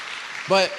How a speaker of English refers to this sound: yeah, we can go ahead and clap. That's a miracle.